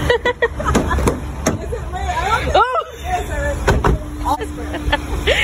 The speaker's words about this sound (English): Oh, getting in the car. Yeah.